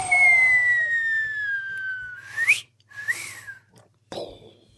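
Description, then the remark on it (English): A person whistles to imitate rushing wind: one long, slowly falling tone, then a sharp upward swoop and a couple of shorter gusty whistles, loud with no talking. “Well, the giant took off after the lovers so fast that the wind whistled behind him.”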